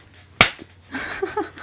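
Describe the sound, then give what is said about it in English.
One sharp, loud hand clap, a man giving himself a high five, cracks out on its own, followed by a short lull and then soft murmuring voices. “He just gave himself a high five.”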